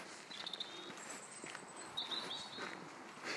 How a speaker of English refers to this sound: I keep imagining that's a chaffinch. Rather than a willow warbler. I don't see any willow trees here.